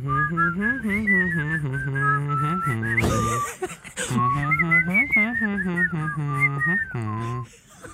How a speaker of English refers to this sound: I think it's pretty spot on. Yeah. One of us can whistle. I don't think my whistling was on point there either.